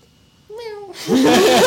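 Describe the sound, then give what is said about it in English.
A person does a single short meow imitating a cat, its pitch sliding downward, followed immediately by louder, rougher vocal noise from other people. “I've never really questioned why he meows.”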